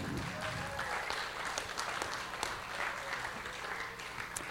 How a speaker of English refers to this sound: And so let's give them a clap and welcome them up.